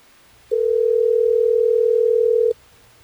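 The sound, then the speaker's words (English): A single steady telephone ringing tone sounds for about two seconds, loud and clear, with no voices, then cuts off abruptly, as hosts of the radio station Hot 101.5 in Tampa Bay place a call to a listener on the air. “let's try to get Mariah on the phone”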